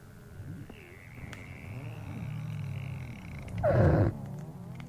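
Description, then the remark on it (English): Underwater recording, made off the coast of the Antarctic, of ice melting in the Antarctic summer: a steady low rumble with creaks and a thin whine, then a louder bubbling, fizzing burst near the end before it settles again. “This is the sound of the ice melting in the Antarctic summer.”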